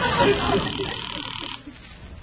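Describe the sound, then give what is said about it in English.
A telephone rings with a thin, tinny tone, loudest at the start and fading over a couple of seconds, with muffled voice-like sounds mixed in. “I tell you what, you hang up and I'll call you right back.”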